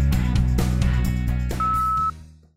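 A single steady voicemail beep, about half a second long, cuts in over rhythmic background music with drum hits, and the music then fades away.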